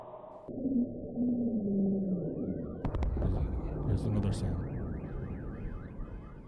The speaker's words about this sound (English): Was that siren sound supposed to be in there? Yeah. The booms are setting off car alarms.